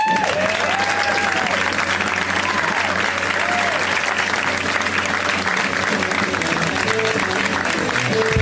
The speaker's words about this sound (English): He is also a friend of the show and just absolutely so funny. You guys, please give a huge round of applause to Matt Bronger.